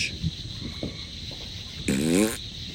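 Cicadas buzz in the countryside in a steady, high-pitched drone that fills the background throughout, joined near the end by a brief, louder, wavering burst of sound.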